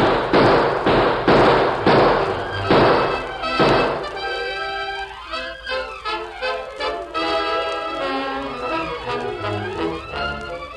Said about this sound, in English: Let's riddle that door, Sheriff. We're bound to hell. You in there. Better open up or I'll cut down the door with lead. Start cutting, Sheriff. I'm ready.